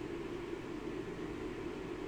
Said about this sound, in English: But I think a jet plane is going above me. This might be. It's probably surveying me because I'm saying wrong think.